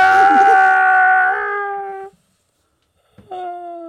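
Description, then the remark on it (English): A talking cow, the Cow King, gives a loud, drawn-out scream that wails for about two seconds as a glazer's suction sucks him inside, then cuts off into silence before a second short cry of "no!" bursts in at the end. “As the Cow King gets closer to the glazer, Graham activates the suction and sucks him inside. Talking Cow screaming, no!”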